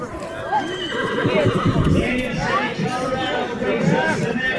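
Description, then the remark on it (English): Horses whinny and neigh repeatedly amid a busy, crowded rodeo arena during a Saturday evening barrel race at the San Miguel Basin Rodeo, beside the grandstands where cowgirls await their turn, with hooves clopping underneath and a murmur of people's voices blending into the steady, loud background. “In a test of horse handling and athletic power, the steed and rider race in a cloverleaf pattern around four barrels set up in the arena.”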